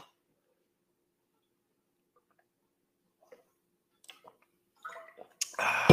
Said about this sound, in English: That's water, by the way.